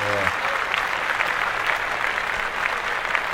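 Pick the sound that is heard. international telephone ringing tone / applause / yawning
applause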